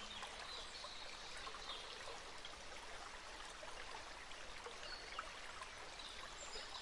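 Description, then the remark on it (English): A gentle babbling brook flows steadily at a distance beside a secluded garden in a summer forest, its soft, continuous trickle of water filling the background with a faint, even wash, with a small chirp near the end. “The air is filled with the sweet fragrance of blooming flowers and the gentle sound of a babbling brook in the distance soothes your senses.”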